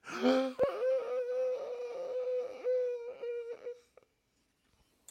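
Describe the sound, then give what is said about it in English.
A person lets out a theatrical gasp: a short low sound, a sudden sharp intake of breath, then a long, high, wavering voiced cry lasting about three seconds before cutting off into silence. “I did it there. I did the gasp.”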